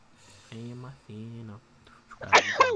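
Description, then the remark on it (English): A single loud sneeze caused by allergies: two drawn-out voiced 'ah' intakes build up before a sharp, explosive burst near the end. “Bless you, holy shit.”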